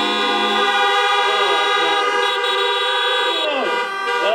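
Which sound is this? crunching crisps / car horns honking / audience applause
car horns honking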